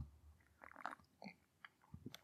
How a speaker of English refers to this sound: So I've got a lovely cup of Twinings Earl Grey. Let me just have a quick old sip of the old Earl Grey because I do like Earl Grey.